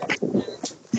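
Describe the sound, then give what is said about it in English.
A rescue dog whimpers in a few short, high-pitched bursts, a brief whiny sequence of soft cries lasting about a second with no one talking. “Okay, so they are both rescue dogs.”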